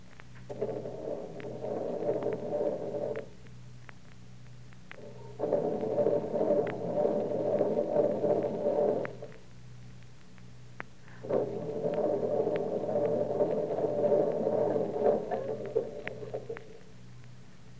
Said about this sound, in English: It must be the battery. I think it's gone dead. Oh, fine. 1 o'clock in the morning and the car won't start.